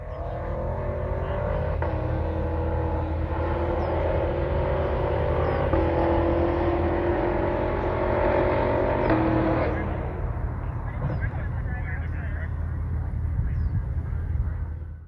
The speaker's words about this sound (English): we're going to leave you with this video of an Escalade V ripping across a bridge in Arizona with its exhaust echoing off the rock wall around and the water below.